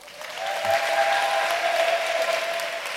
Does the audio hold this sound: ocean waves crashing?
no